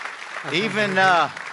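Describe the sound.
A church audience applauding to honor someone's 20 years with the church family, a dense, steady clatter of many hands throughout, with a single voice briefly rising over the clapping in the middle.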